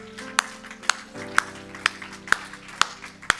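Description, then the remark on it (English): A church audience claps together during communion in a steady, even beat, about seven sharp claps in a row over sustained low musical tones, with no talking. “That's worth clapping over.”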